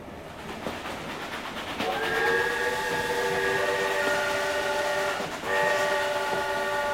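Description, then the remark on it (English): A passenger train bound for Paris rumbles steadily along while its horn sounds two long, loud blasts, the first lasting several seconds and the second following after a brief pause. No one speaks. “I swallowed my misgivings and bought my train ticket, hoping that in Paris I would have more luck with my advertisements.”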